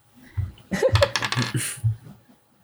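Dice are rolled for a religion check: a quick clatter of small hard objects tumbling and knocking across a surface, a burst of sharp clicks lasting about a second, moderately loud, with faint laughter-like voices around it.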